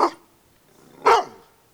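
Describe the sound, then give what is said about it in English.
A dog named Buddy barks twice, about a second apart; the first bark is short, the second louder and fuller, each sharp, with quiet between them and no one talking. “Buddy? Come here, Buddy.”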